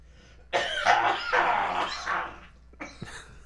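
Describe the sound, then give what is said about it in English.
A harsh, sputtering choking cough: one long raspy, strained fit lasting about two seconds, then a brief pause and a second shorter burst of coughing. Loud and gravelly, with no talking. “I heard water in there. Me too, man. Go give him the Heimlich.”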